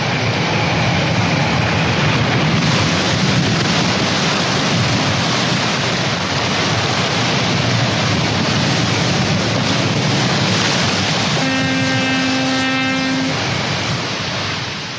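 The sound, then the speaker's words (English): A loud, unbroken roar of storm wind and pounding sea waves in the Santa Barbara Channel, with a steady low horn-like tone sounding for about two seconds near the end. “In a remarkably short time, nature's capriciousness can show its hand, and the Santa Barbara Channel turns angry and treacherous.”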